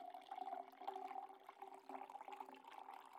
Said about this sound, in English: And what am I doing? Just pouring water into the bong?